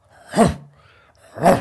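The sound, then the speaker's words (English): A voice imitates suppressed coughing: two muffled, throaty bursts about a second apart, each with a groaning, voiced edge, with near quiet between them. “Oh yeah, so I was trying to stop myself doing the, you know, like the power cough that it makes you want to do. So I was suppressing it.”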